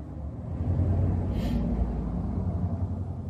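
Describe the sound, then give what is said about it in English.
A car drives by outside while a video is being made: a steady low rumble swells gently and a brief burst of tire hiss peaks midway before the engine noise settles again. No one speaks. “Did you hear the car?”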